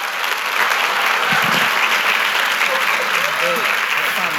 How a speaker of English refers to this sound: So would you do me the favor of giving both of them applause